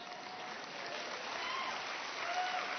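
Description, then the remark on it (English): A modest round of polite courtesy applause from an audience, a steady, even patter of many hands clapping for a few seconds, without cheers or voices. “Courtesy applause, thank you.”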